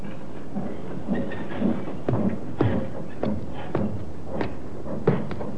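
A train rolls slowly through the railroad yard at Alnmouth, in the coal district around Newcastle. A steady low rumble is broken by irregular metallic clacks and knocks as wheels pass over track joints, with no voices.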